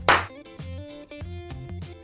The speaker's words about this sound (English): All right, let's do a clap in 3, 2, 1.